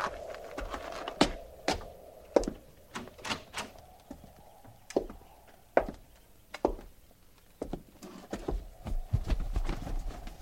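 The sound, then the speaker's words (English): Horses walking on hard ground, their hooves clip-clopping in an uneven, steady rhythm of sharp knocks, with a low rumble underneath and no talking. “Hobble them horses and get up.”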